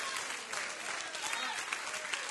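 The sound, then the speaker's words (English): A church audience claps steadily during a sermon, a dense wash of overlapping hand claps holding at an even level throughout, with no single voice standing out. “We got to go beyond just applauding a pastor who's preaching faith to applauding a God who's given us the miracles that I could preach about day in and day out in this pulpit.”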